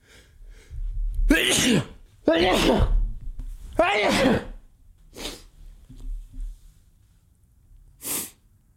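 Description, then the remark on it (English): A rapid fit of sneezes, three forceful bursts in quick succession followed by a couple of softer sneezes and a sharp final one, with heavy breathing between. “I don't know where that sneezing attack came from.”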